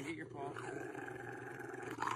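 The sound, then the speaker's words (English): A Rottweiler being bathed and soaped down in a kiddie pool in a backyard growls in a low, rough, continuous rumble lasting about two seconds, holding a steady loudness throughout with a slight swell at the very end. “bathing the Rottweiler was what they were doing with that audio”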